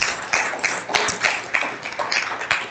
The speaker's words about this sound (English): Amen. Go ahead and clap. That's okay.